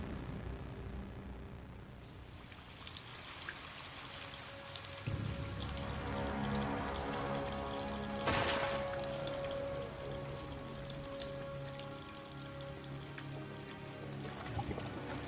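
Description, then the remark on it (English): Water pours and splashes steadily from a sewer outflow, a continuous rushing wash with a brief louder surge midway and a faint tonal hum underneath. No one speaks. “Look like she fell off a waterfall, but it's not. But it's like the end of the sewer type shit.”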